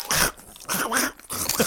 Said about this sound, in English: He's really loudly munching Cheetos.